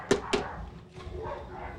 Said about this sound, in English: Let me shut my dog up. Give me a sec.